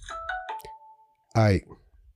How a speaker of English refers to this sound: What the hell was that? I have notifications. I don't even know what that notification was.